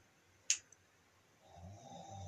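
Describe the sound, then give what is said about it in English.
A faint, muffled snore heard through a wall builds in the second half, a low rasping drone, after a brief sharp click near the start. No one speaks. “you could hear snoring through the wall.”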